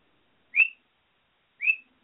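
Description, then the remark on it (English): Two short, bright chirping whistles from pet birds, the Pony Birds, at night, about a second apart, each a quick high-pitched rising note with a brief trailing tail, sounding alone against silence. “Yes, Pony Birds, I hear you. You're very chatty tonight.”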